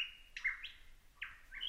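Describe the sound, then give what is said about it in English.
A lyrebird mimics a kookaburra's staccato rattling call: several loud, bright bursts of chattering notes in quick succession, with no talking. “That staccato rattling off. Perfect mimic of a kookaburra bird, largest member of the kingfisher family and perhaps the most iconic Australian bird sound of all.”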